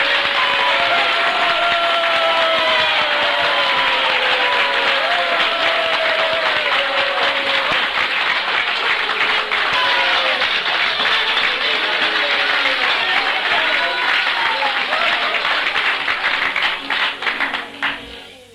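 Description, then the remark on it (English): A large crowd gives Jesus a hearty clap, clapping continuously for about seventeen seconds, many voices shouting and cheering over the applause, before it tapers off at the end. “Now, if you believe that's true, let us all give Jesus a real hearty clap.”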